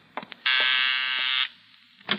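A harsh, steady doorbell buzzer sounds once for about a second as someone arrives at the door, a loud flat electric drone, with a few brief clicks and knocks before it and a short thump after.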